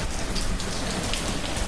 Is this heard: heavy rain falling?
yes